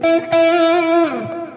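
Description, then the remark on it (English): An electric guitar played in C sharp minor holds a bright, sustained note with a little reverb and delay trailing behind it, then bends downward as a quick picked accent rings out; no one speaks. “What I want you to notice is that I've got a little bit of reverb on. And I've got a little bit of delay.”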